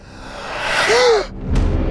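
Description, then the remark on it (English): A sharp, breathy intake of air rises and swells, a startled gasp with a brief voiced edge from Asclepius's ghostly shade seeing his own corpse, heard alone, then fades into a soft rumble. “Hades and Hermes heard the startled gasp and turned to see Asclepius's ghostly shade staring down at his own corpse in horror.”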